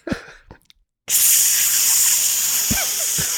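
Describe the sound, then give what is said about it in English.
A person vocally imitates a burning piece of wood being stuck into Polyphemus's single eye, as a sound effect: after a few short mouth noises, a loud, steady hiss starts and holds for over two seconds, with a couple of faint crackly pops near the end. “Like a burning hissing.”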